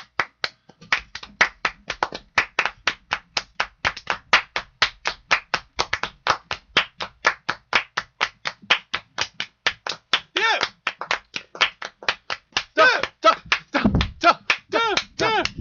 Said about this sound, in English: Enough of that. All right. I just felt like clapping.